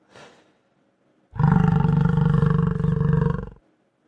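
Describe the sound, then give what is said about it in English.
A buffalo lets out one deep, loud bellow that drones steadily for about two seconds before cutting off, preceded by a brief faint huff. “It was a buffalo.”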